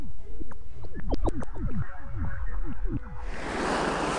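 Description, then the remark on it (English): A series of warbling, swooping tonal cries gives way after about three seconds to a sudden loud surge of rushing water, as the remaining water is swept up into a vertical column around everyone present, roaring steadily to the end. “swept the remaining water up into a vertical column, enveloping everyone present”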